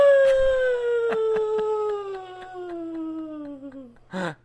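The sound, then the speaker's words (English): A person's voice imitates a wolf with one long, loud howl that slowly falls in pitch for about four seconds, followed by a brief yelp-like burst at the end, given as a celebratory birthday howl. “Can I get a celebratory birthday howl from the wolf?”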